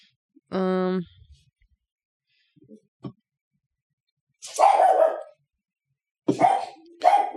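A dog barks: first a single sharp, tonal yelp, then after a pause a few louder, rougher barks in quick bursts.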